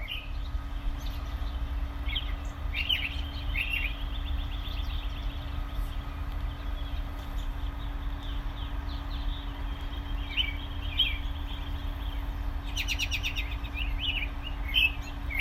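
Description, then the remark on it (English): Robins chirp in short, scattered bursts on a winter day in southern Indiana, over a steady low rumble of outdoor background noise, with a denser flurry of calls near the end; no voices. “That was Robins on a Winter Day in southern Indiana.”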